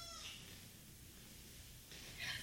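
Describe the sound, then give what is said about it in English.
A faint, brief cat meow at the start over a low background hum, followed by a short, brighter, high-pitched sound near the end. No one speaks. “I heard a kitty. That would be mine.”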